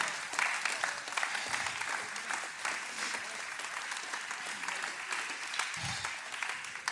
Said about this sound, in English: Would you stand to your feet and clap your hands and give God some praise this morning?